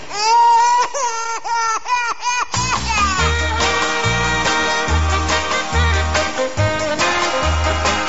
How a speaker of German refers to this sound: Mein Girl hat keinen Tag für mich alleine Zeit, zum Küssen fehlt uns meistens die Gelegenheit, weil immer dann das Baby in der Wiege schreit